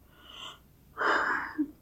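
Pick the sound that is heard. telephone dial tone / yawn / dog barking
yawn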